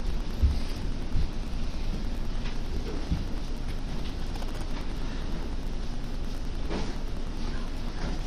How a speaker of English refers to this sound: And we are definitely getting some rain.